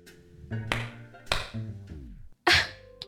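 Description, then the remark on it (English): Three sharp hand claps ring out at uneven intervals, each a crisp, bright smack, with steady humming tones filling the gaps between them; the claps are made to work a clap-controlled stereo. “You just clap your hands and the stereo turns on?”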